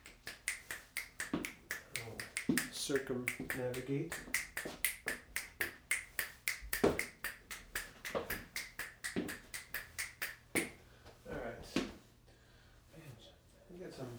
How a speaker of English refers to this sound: Let's get something higher frequency. Here, a set of keys or something jangly. Not finding that. I could snap.